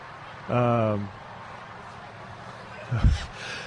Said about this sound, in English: Bless you. Goodness. Oh, my goodness. Where'd that come from? Are you okay?